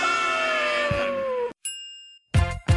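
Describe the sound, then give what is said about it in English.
A bright electronic mail-arrival notification ding rings out once and fades, opening the mailbag segment of the Talk of Champions radio show, framed by short bursts of other synthetic tones before and after. No one speaks. “The mail's here.”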